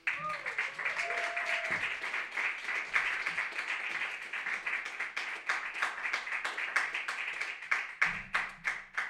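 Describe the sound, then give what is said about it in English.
An audience at an evening reading applauds to welcome the next reader, many hands clapping continuously for about nine seconds, dense and bright, with a brief low hum of voices murmuring underneath near the start and end. “Give it up for Mark.”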